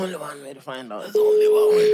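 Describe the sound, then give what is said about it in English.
Voices talk briefly, then a loud, steady single-pitched telephone ringing tone starts and holds unbroken to the end, sounding clear like a call ringing through a phone line. “No, it's ringing. It's ringing.”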